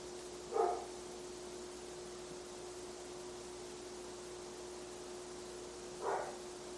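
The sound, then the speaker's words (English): A dog barks twice, faint, with about five seconds between the single barks, over a steady background hum and hiss. No one speaks. “Lovely dog ancestor chiming in.”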